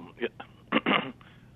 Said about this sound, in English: Oh, sorry, you were clearing your throat. I thought you didn't want to say.